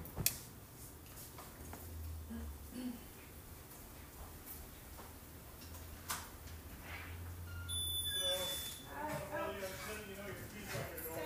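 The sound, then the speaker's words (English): A doorbell rings once with a bright, tonal chime partway through, faint beneath a low hum and some background voices, with a few soft clicks earlier on. “somebody is ringing my doorbell.”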